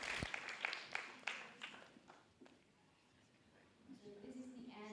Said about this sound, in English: And another round of applause, please. Thank you so much for coming.